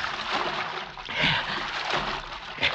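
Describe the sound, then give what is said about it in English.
Water sloshes and splashes steadily as a man wades through a creek at night in spotty moonlight, with a couple of heavier splashes standing out, moderately loud. “He gotta wade the creek, even if it is full of cotton mouths.”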